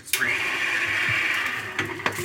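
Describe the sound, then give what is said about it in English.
A blender whirs steadily for about two seconds, mixing spices including nutmeg, a sustained mid-high motor buzz that starts abruptly and holds level, with a few brief clicks near the end. “Buzz that for a second, get it incorporated, and then I'm gonna hit it with my liquid.”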